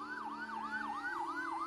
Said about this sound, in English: ran to the window just as several fire engines roared by.